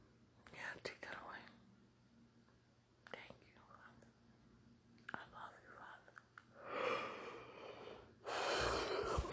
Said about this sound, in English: Excuse me, sir. I just yawned in your ear.